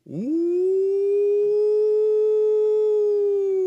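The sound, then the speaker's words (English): A voice imitates the low-pitched howl of goat-guarding dogs that start howling every night about dusk: one long, loud 'ooh' that slides up at the start, then holds a steady, siren-like pitch for over three seconds, with nothing else heard. “Ooh, deeper than a fire whistle. And then there'll be another one up on the hill.”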